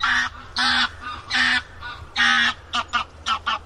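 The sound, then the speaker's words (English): A goose honks loudly and repeatedly overhead, a run of harsh, nasal calls, long at first, then quicker and shorter toward the end, with no voices. “This helps us tell if the sound is coming from the right or left, like that noisy goose flying by overhead.”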